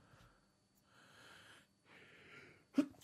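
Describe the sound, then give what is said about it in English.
Two long, hissing intakes of breath build up before a single sharp, explosive sneeze bursts out, with no talking around it. “You've been yawning and sneezing this whole podcast.”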